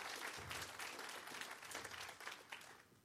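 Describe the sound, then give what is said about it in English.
An audience claps together for the pastor in a steady, dense burst of applause, many hands overlapping into a continuous patter that holds for a few seconds before easing slightly. “Y'all give Pastor a hand clap.”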